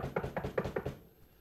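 A quick run of about five sharp knocks on wood, evenly spaced, fading into quiet after the last one. No one speaks.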